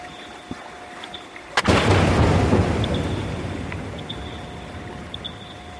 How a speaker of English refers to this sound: And maybe to give an example, we can play the fourth sound in the okay. archive, which is a recording from these seismic air guns, how they actually sound, because they do sound quite violent, just to give you an idea.